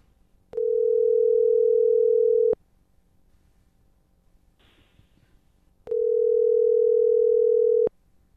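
Two long, steady telephone ringing tones of an outgoing call to a woman who is not picking up, each about two seconds, separated by a quiet pause with a faint brief rustle. Clear and fairly loud, with no one speaking.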